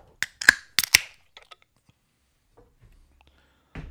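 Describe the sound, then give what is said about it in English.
A can of 7.1% ABV beer being cracked open to be poured into a glass: a quick run of four sharp metallic snaps and a short fizzy hiss, then near-quiet with faint small clinks before another abrupt noise at the end. “Let's fucking pour the shit.”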